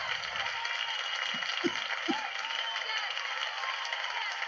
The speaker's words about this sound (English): Oh, she's clapping now, is she?